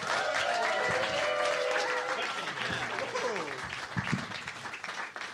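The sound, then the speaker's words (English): A crowd applauds a headlining comedian steadily with dense, loud clapping throughout, mixed with cheering and whooping voices that rise above the noise before the applause slowly thins toward the end. “Start clapping right now, please, for Jordan Thulis.”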